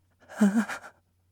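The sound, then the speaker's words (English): A short, tense burst of a person's breathing while feeling afraid, lasting under a second, quick and slightly shaky with a faint voiced edge, like a frightened gasp, fairly clear, then silence. “For example, when the subjects felt afraid, the breath sounded like this.”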